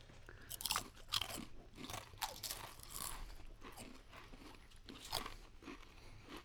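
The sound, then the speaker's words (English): Loud crunching of thick vinegar potato chips being chewed right into a microphone, a rapid series of sharp brittle cracks and grinding bites one after another, with no talking. “Try to chew right into the microphone if you can.”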